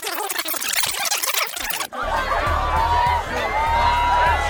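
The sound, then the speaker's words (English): A noisy crowd roars and cheers, then after an abrupt cut the dense crowd murmur continues with scattered shouts and whistling voices, loud throughout. News tape of the crowd at the Silver Tongue Devil's return to his native home. “He was moving through the crowd of people.”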